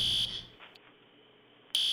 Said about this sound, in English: There's like some kind of alarm going off in my room, and I'm not sure what it means. Can you hear that?